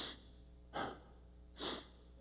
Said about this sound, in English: Did you know that you can only hold your breath so long? and you involuntarily, you know, have to breathe.